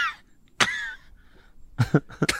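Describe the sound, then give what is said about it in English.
A person imitates a cough: one sharp, raspy burst, a short pause, then a quick run of three or four hacking coughs. There is no talking. “No, she'd wake up and her pussy would be coughing.”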